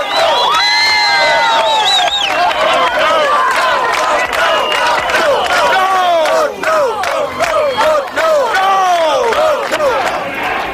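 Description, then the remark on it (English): A large crowd yells and shouts continuously, many voices overlapping in loud, rising cries and chants, with no pause for the full length, sounding like an agitated mass gathering outdoors. “I mean, they're yelling outside already.”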